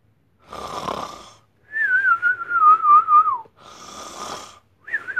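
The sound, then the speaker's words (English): A voice imitates SpongeBob's cartoon snore: a raspy, breathy snore followed by a long, wavering whistle that slides downward, then the pattern starts again. No talking. “And except I don't snore.”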